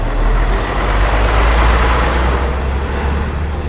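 A mission truck's engine roars to life and runs steadily, a loud, deep rumble with a broad mechanical hiss that holds constant throughout, with no voices.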